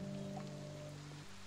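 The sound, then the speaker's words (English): Rain falls steadily in a forest during unseasonably cold, wet weather, a soft, continuous hiss, fairly faint, with a low steady hum running underneath and no voices. “I guess winter has just come early this year, just like these rains.”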